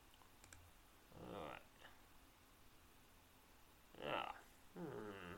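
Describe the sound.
A few quick, soft computer mouse clicks, clicking a link, tap near the start, separated by quiet pauses, then brief bursts of muffled voice sounds break in later.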